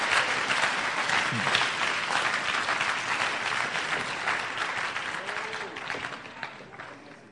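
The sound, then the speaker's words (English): A crowd claps for God steadily for several seconds, a dense, loud wash of applause that slowly tapers off, with a few faint voices calling out underneath. “Clap for the predestination God that we are serving.”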